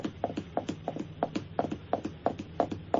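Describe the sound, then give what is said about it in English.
Fingers drum rapidly on a chair arm in a galloping, hoof-like rhythm, a steady run of soft, dull taps grouped in quick triplets with no voices. “I can do a really good drumming sound on the arm of my chair. That's just my fingers.”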